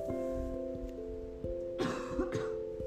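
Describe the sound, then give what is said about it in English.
Two short, dry coughs close together from a very dry throat, like someone clearing a scratchy throat, over a steady low humming tone that continues throughout. “I have a little bit of a cough because my throat is super dry.”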